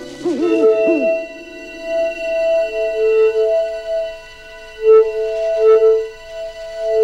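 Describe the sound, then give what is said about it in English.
A soft, hooting synthetic two-tone sound effect from the film E.T., heard when the aliens communicate with their heart lights: a pair of steady pitches a perfect fifth apart, opening with a few quick wavering swoops, then holding with gentle swells and pulses. No talking. “It is made up of two different tones that are, you guessed it, a perfect fifth apart.”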